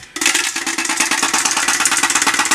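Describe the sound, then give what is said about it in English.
Beer cans shaken in a fast, steady metallic rattle that mimics the rattle of something left loose inside a car engine, loud, starting abruptly and continuing in rapid pulses without talk. “I can actually recreate said noise with some beer cans.”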